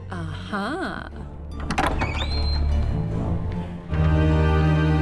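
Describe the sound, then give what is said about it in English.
A door handle rattles and clunks as a latch releases and the door swings open, followed by a steady low mechanical hum, with brief wordless vocal sounds just before. “It means the door is ready for you to open.”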